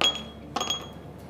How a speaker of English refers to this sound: So this dalgona mix is done. Let's get our glasses. And we need to add in some ice.